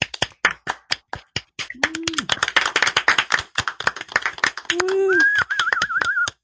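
An audience breaks into applause, a dense patter of many hands clapping at a steady roar, with a few whoops and a rising whistle cutting through near the end.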